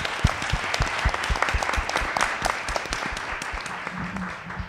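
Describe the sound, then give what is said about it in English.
A crowd applauds the panelists before audience questions: many hands clapping in a dense, continuous patter at a fairly loud level that holds throughout without thinning out. “But first, a round of applause for our panelists.”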